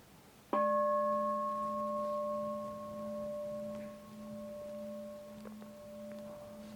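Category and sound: signal or alarm, meditation bell ringing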